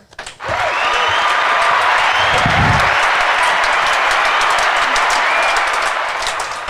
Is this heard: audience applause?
yes